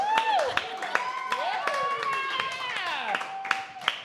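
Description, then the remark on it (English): Audience clapping at the Sacramento Comedy Spot as the cast of Potato Bureau is welcomed to the stage comes through as scattered sharp hand claps at irregular intervals, sounding beneath a louder, sustained gliding voice or tonal sound that dominates throughout. “Keep the round of applause going.”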